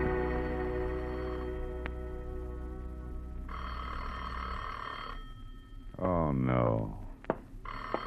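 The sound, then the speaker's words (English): An old-fashioned telephone bell rings loudly in a long burst after fading music, then starts ringing again following a brief vocal sound, in the radio drama The Adventures of Philip Marlowe. “There are some times when the phone just never should have been invented.”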